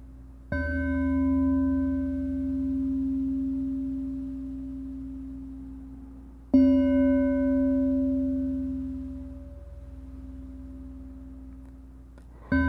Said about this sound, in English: When your mind wanders off, bring it back to the feeling of the breath inside you and the sound of the chimes.